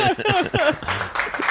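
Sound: audience clapping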